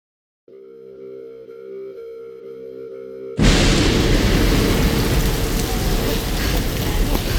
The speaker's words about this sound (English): stop the storm!